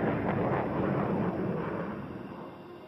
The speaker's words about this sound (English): If the plane moves faster than the speed of sound, it creates a bow shock. People on the ground can hear the combination of those sound waves as the bow shock passes in front of them in the form of a sonic boom.